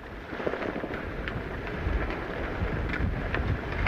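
Heavy rain pours down in a dense, steady roar outdoors at sea near South Rock off the southern shore of County Down, under an overcast sky, with gusty wind noise rumbling against the microphone and scattered sharp patters of drops throughout.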